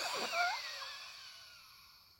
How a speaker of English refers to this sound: This has a term. It's called the bellows. You bellow out all the air that's in your lungs. And you do it a few times.